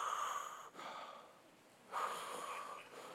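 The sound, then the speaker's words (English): A voice imitates heavy, raspy breathing as if over a phone line: two long, noisy breaths, an exhale then an inhale, fairly quiet, with no words spoken. “And the kidnapper's on the other side, breathing.”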